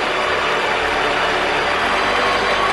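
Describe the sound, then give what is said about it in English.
A large crowd at a New York Rangers game boos Governor Kathy Hochul as she is introduced to drop the puck. The booing is a loud, unbroken roar that holds steady for the full few seconds, a dense wash of voices with no single speaker standing out. “Here's about 10 seconds of Kathy Hochul getting booed like you've never heard before.”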